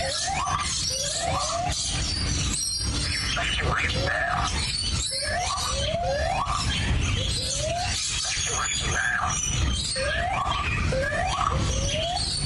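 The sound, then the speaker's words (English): A lyrebird at Taronga Zoo mimics a fire evacuation alarm, repeating rising electronic whoops every second or two, fairly loud and steady over a constant hiss of background noise. “Fire evacuation emergency. This is a bird, a lyrebird at the Taronga Zoo.”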